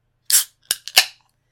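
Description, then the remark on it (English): A beer bottle cap pries off a bottle of Bootstrap Brewing Company Wreak Havoc Imperial Red Ale: a short hiss, then a couple of sharp metallic clicks and a final bright pop, all within about a second, with no talking. “I'm going to pop my top.”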